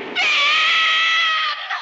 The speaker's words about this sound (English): And then she, in this weird silent moment, this weird space, she screams.